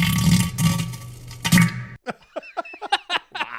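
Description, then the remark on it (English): A loud, rough, sputtering fart sound drop, played back from a recording, with a few pulsing swells runs for about two seconds and has an echo at the end, then cuts off abruptly, after which a person starts talking. “And I just want people to appreciate the echo at the end of this drop from the fart.”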